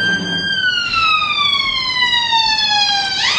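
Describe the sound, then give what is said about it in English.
An ambulance siren passing outside wails loudly and steadily, one long tone sliding slowly downward before sweeping back up at the end, with no voices over it. “just going to wait for the police car to go past. Ambulance”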